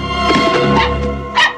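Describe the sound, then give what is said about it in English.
Tiger the dog barks in a basement, a quick run of several yappy barks followed by a short pause and one more sharp bark, with no talking. “Suddenly, a box falls off a shelf to reveal Tiger the dog is the one haunting her in the basement.”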